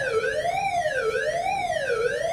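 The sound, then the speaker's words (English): A loud tornado drill siren at a school wails steadily during a routine drill at the end of the school day, its pitch sweeping up and down roughly once a second in a continuous cycle, with no voices present. “Hearing the siren really just kind of sent Ella into that state of all-consuming fear.”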